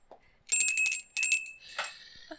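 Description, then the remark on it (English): A small bicycle-style bell rings twice in quick succession, each bright metallic ding ringing clear before fading, with no talking over it. “Where's my bell?”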